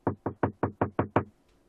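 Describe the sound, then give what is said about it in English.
A quick run of seven firm knocks on a door, evenly spaced, each with a short woody thud before it fades into silence. “And so I crack open the door and say, can I help you?”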